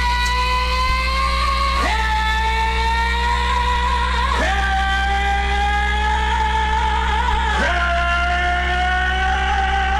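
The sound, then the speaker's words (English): Jimmy Barnes imitates a car engine with his voice, revving up through three gear changes, the whining pitch climbing then dropping at each shift, loud over a steady low hum, with no talking. “But our favourite impression of a car doesn't come from either of them.”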